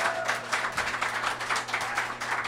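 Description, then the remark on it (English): A live show audience applauds, the people seeing both nights' shows clapping steadily, many hands in a dense, fast patter that holds an even loudness throughout, with no voices over it. “Applaud if you're seeing both of the shows here.”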